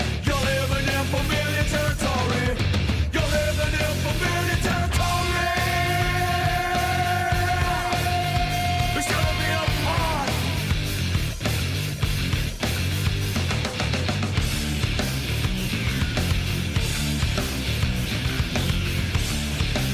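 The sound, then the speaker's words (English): Heavy, riff-driven Australian rock plays loud and dense throughout, with crunching distorted guitars, pounding drums and a strained, shouted vocal holding long notes in the middle. “Crunching, riff-driven Oz rock at its finest.”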